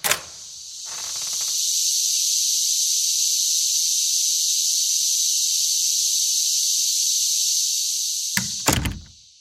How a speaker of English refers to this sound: Here on the U.S. East Coast, Brood 10 cicadas are having an increasing impact on industry. For more on that, we go to the cicadas right outside our office door.